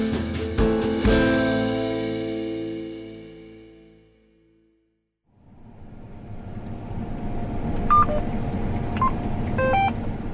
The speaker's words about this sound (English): The GPS of this John Deere combine sounds off as the tractor slowly cuts down a big swath of wheat. Inside the cab, things are really calm and cool. The AC makes sure of that.